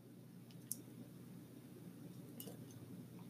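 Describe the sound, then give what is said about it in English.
Ice cubes clink lightly against a glass of iced coffee a couple of times as someone sips it, soft bright taps over a low, steady background hum, with no one talking. “Dude, let me just sip my goddamn coffee because if I don't finish it now, the little ice cubes are going to melt and it's going to taste funny because the ice cube water is usually just straight up sink water, not filtered.”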